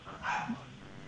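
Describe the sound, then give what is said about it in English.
A single short dog bark, slightly muffled, followed by a faint low yelp and quiet background hiss. No one speaks. “I'm going to let you go because I've got to go and murder a dog.”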